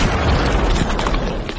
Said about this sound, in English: As the explosive retort from your gun rolls across the starless sky, the gnoll's head disappears into a geyser of blood that rushes up along the wall of the church and falls slowly, almost gently, as a red mist that settles over all four of you.